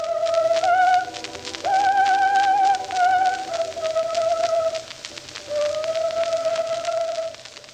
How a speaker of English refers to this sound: He collected famous singers of the era, like Georg Anthes, Lucien Breval, Jean Doresc, and Johanna Gadsky, who's in this recording. Some of his recordings would be the only surviving audio of these singers.